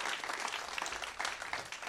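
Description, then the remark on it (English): An audience at a church service claps their hands together to give God praise, a dense, steady wash of many overlapping claps with no clear rhythm, fairly loud and unbroken throughout. “Come on, clap your hands like you believe somebody moving forward.”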